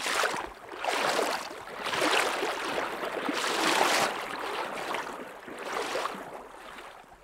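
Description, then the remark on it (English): Rushing stream water surges and splashes in broad repeated swells as a person in waders sloshes step by step across a narrow stream, leaning into the strong current, with no voices. “we slosh across to the other side. A The rushing water squeezes the waders tight and cold against my legs, and I have to lean into the current to avoid toppling over.”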